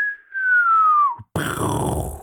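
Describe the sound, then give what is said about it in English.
A voice imitates a falling missile: a long descending whistle sliding down in pitch, a brief gap, then a rough, breathy explosion-like burst that fades slowly. “Oh, wow, that was a missile.”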